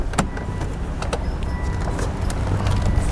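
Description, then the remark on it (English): A driver climbs out of a car during a vehicle safety assessment, with a few sharp clicks and soft knocks of the door and seat against a steady low rumble. Moderately loud, with no talking. “So, can you hop out of the car for me, please?”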